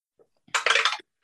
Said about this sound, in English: Okay, let's roll better. Different dice this time.